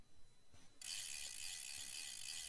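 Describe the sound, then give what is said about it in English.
A servant winds the heavy key of a machine with a brief soft click, then a loud, steady mechanical whirring of the machine's turning gears sets in and runs on without a break, bright and hissy. “A servant wound the heavy key, and gears turned within the machine.”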